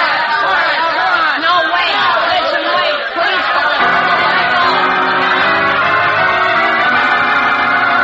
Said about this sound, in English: Shouting wildly, the angry mob of students surges forward against the locked door, placing Jimmy Olsen and others who have gone down in danger of being trampled.